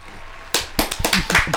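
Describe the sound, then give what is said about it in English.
After a brief quiet moment, a burst of hand clapping for a joke breaks out: quick, irregular, overlapping claps, sharp and fairly loud, like a few people applauding for about a second. “Claps for that.”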